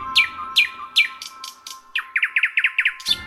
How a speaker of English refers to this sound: I think the most interesting bird in poetry is the nightingale. It's not really much to look at, but it has this extraordinary song.